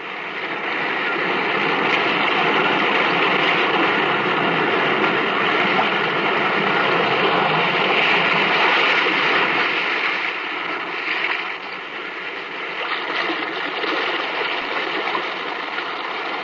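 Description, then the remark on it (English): Restless sea waves surge and churn inside a cave, a loud, steady rushing roar of water that swells and eases briefly before surging on, with no voices. “In this cave by the restless sea, we are met to call from out of the past stories, strange and weird.”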